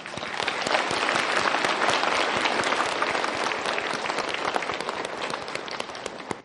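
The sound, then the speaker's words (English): A large audience claps steadily and loudly, a dense sustained wash of many hands clapping without pause for several seconds, no voices standing out above it, welcoming distinguished guests at an event. “Please join us in welcoming all of our distinguished guests with a warm Thai applause.”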